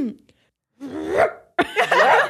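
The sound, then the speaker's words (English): A person imitates a small dog, like a Pomeranian, barking: two yappy, high-pitched barks in a row, the second one longer and more ragged, with a short pause between them. “You sound like you could be like maybe a Pomeranian.”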